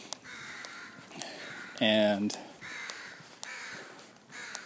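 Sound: crow cawing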